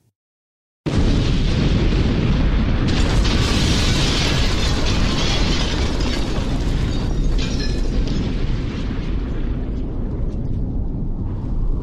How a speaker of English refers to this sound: At 9:04 and 35 seconds, a time later verified by the seismic records from the day, the explosion happened.